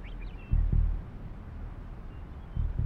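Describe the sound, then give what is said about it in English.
A dull, deep pulsing throbs low and steady, like a slow heartbeat, with paired thumps recurring about every two seconds over a faint background rumble and no voices. “That dull pulsing sound that sounds like it's coming from the bowels of the earth.”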